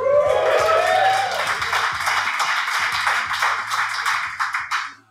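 An audience at a live show in Chicago, Illinois claps in a dense, steady burst of applause with a few cheers at the start, holding loud for several seconds before thinning into scattered claps and stopping.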